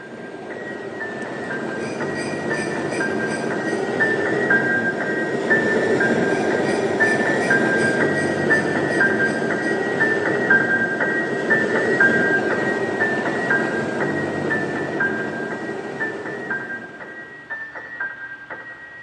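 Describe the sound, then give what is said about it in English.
A train rolls steadily along the rails with a continuous low rumble and a high, whining metallic tone riding over it, holding for most of the time before easing off near the end. “I'm 23, I work in New York City and commute home every day on the train.”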